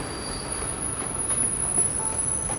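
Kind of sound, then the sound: vehicle, train running on rails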